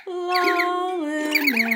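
A pet bird squeaks in one sustained, reedy call lasting under two seconds. Its pitch steps down midway, with quick chirpy warbles above, and no voices are heard.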